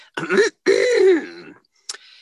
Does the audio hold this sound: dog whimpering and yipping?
no